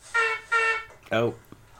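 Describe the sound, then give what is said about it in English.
Two quick, bright honks of a clown horn sounded by a clown, each steady and buzzy at the same pitch, followed by a short vocal exclamation that slides downward. “Clown just honked his wiener.”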